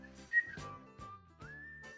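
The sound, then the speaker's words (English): A live concert crowd whistles a steady, sustained melody along with the music, the whistled tune gliding between notes over a regular thumping beat, fairly loud with no talking. “He'd have the crowd whistle.”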